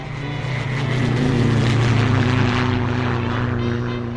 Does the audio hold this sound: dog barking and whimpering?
no